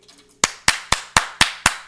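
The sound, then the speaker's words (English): After a brief quiet lead-in, seven sharp, loud hand claps arrive in a quick, steady rhythm, each a crisp slap with a short decay, like one person clapping alone. “Clap for fucking me.”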